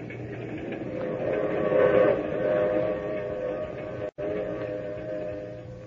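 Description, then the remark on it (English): A train rolls steadily along the rails, a continuous moderately loud rumble with humming mechanical tones, broken only by a brief dropout near the end. No one speaks. “Not till I'd gotten on the train with her and we were riding along to tell me why.”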